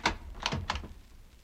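A door being opened: a quick run of sharp latch-and-handle clicks with a soft low thump, lasting under a second, then quiet. No one speaks.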